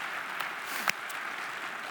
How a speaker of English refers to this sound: So you can give yourself a round of applause for that. That's fantastic.